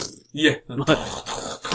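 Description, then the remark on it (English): A voice imitates the classic Sega Mega Drive video-game fart sound, a buzzy, low blurt in two short bursts, followed by a stretch of rough, breathy noise. “The fart sound.”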